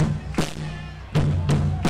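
A crowd stomps its feet and claps in a steady beat, with heavy, booming thuds punctuated by sharp, loud hits, all over a low rumbling murmur.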